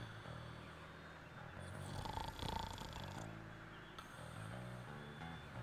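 A person snoring in an apartment, heard from the other room, with a low, rattling rumble that swells into a louder, raspier breath midway, then settles back to a steady drone. No talking.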